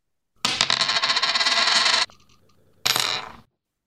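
A penny is flipped to pick the Cowboys versus Colts game, spinning and rattling on a hard surface for over a second, briefly quiet, then clattering again and settling on Indy. Fairly loud metallic ringing, with no voices.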